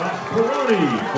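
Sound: stadium crowd cheering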